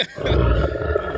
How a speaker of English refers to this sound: Oh, it sounded like somebody burping. Honestly.